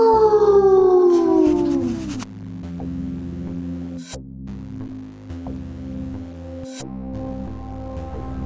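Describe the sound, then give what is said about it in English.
People imitate werewolves with a loud, drawn-out wolf-like howl that slides downward in pitch for about two seconds, then gives way to a steady low droning hum with a few sharp clicks. “You want to howl it out? Howl!”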